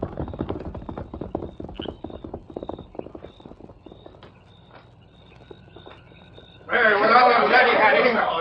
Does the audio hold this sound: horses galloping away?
yes